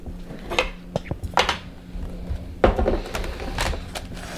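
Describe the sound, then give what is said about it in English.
Kitchen clatter as a knife and cutting board are taken out and set down: several irregular knocks and clunks of wood and metal over a steady low hum. “So let me get a knife and a cutting board.”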